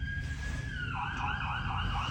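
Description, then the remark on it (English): An emergency siren wails steadily, then shifts into a rising and falling warble, heard over constant low traffic rumble with no one speaking. “That's also a common Canadian experience, sirens, in Toronto at least.”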